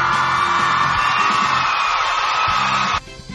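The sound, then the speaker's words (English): An applause sound effect played on a radio show: a short burst of crowd cheering and whooping over a dense wash of clapping, loud and steady for about three seconds before cutting off abruptly. “So, gonna give you a quick applause right here.”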